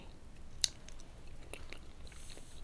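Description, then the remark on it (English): Quiet chewing of pineapple: one sharp wet click early on, followed by a few softer, squishy bites in an irregular rhythm, with no talking. “I'm chewing pineapple.”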